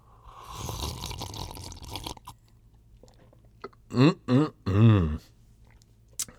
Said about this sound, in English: So without further ado, let's go in for a sip and give you guys some of that sweet ASMR you love so much.